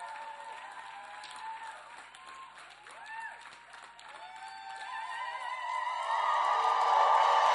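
A church audience claps and cheers as a preacher is welcomed to the pulpit. Steady applause mixes with whooping voices and shouts that build in volume, swelling loudest toward the end.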